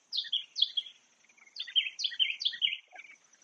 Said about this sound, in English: Birds sound lovely today.